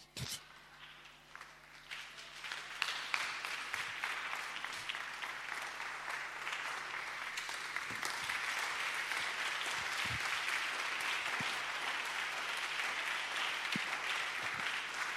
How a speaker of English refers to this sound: Thank you for your claps.